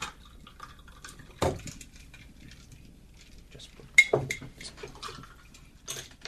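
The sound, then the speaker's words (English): Liquid is poured over ice into glasses, with clinks of ice against glass and a couple of sharper knocks as the glasses are set down. “All right, so now you're going to pour it into these delicious these glasses here. On the rocks.”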